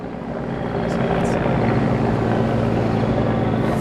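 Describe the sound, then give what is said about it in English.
A helicopter passes overhead, its loud, steady rotor drone filling the whole stretch with a dense rumbling hum that never lets up. “We, of course, had to wait for a helicopter to pass over.”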